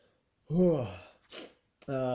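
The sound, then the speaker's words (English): A drawn-out, voiced yawn with a falling pitch, fairly loud, followed by a breathy exhale and the start of another vocal sound. “Oh my God, why am I fucking yawning so much, man?”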